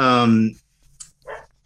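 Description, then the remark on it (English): A pet dog barks in the background of a conversation: one loud, drawn-out bark, followed by a short pause and a couple of softer, brief noises. “I'm sorry, my dog has started barking in the background here.”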